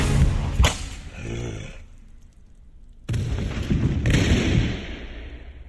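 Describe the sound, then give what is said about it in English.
A single sharp, loud gunshot cracks and rings out, followed by a brief lull before a harsh burst of rumbling noise with another sharp crack in it. No one speaks. “Take that thing down. Shoot it!”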